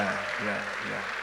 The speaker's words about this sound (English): Shall we receive them with a applause? Please, shall we rise? Shall we rise? Let's give them a hand of applause.